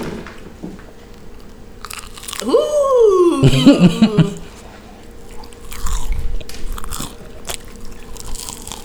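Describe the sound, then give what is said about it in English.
Crisp crunches of someone biting into crunchy chicken nuggets, several sharp bites and chewing crackles spread over a few seconds, with a short voiced murmur partway through. “So these chicken nuggets are really good.”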